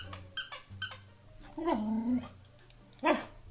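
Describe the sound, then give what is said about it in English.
A young puppy gives a few high, thin squeaky yelps, then a longer whining bark and another sharp yip, fairly loud with short pauses between. “I thought you were just done squeaking. Now you're back to barking.”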